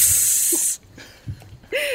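A loud, bright sizzling hiss sound effect bursts out, cuts off abruptly, and after a quieter pause a second short burst of sizzle starts up again.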